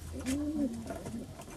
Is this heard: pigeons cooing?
yes